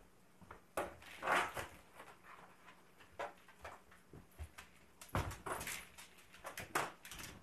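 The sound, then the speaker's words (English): A door being opened to let a dog in, with a series of knocks, bumps and scuffling clatter spread over several seconds, along with soft movement sounds. No one speaks. “And I knew the dog was going to want in as soon as I closed that door.”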